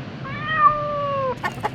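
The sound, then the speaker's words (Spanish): A kitten gives one drawn-out, clear meow lasting about a second, followed quickly by two short, chirpy mews over a faint background hum. “El gatito invita al visitante a dirigirse hacia la cocina.”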